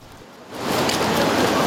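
Steady rain brought by an approaching front falls in northern Taiwan, quiet at first and then swelling after a moment into a dense, hissing downpour that stays loud and continuous with no voices.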